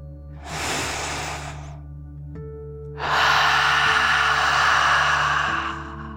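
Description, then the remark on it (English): A deep breath drawn in through the nose, followed after a short pause by a longer, louder, forceful exhale out through the mouth, clear over a low steady background hum with no talking. “Breathe in through your nose, filling up your lungs, and then out through your mouth, pretending you are breathing fire, like a dragon.”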